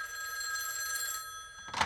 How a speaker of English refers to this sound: And then, just before the House of Representatives was about to vote again to keep Title IX intact, Patsy got a scary phone call.